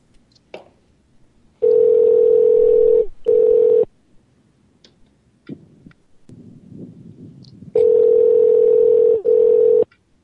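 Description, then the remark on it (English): A loud, steady telephone tone after a call disconnects, sounding in long buzzing bursts with brief gaps between them and a quiet stretch in the middle, with no voices. “Oh, I think they've hung up.”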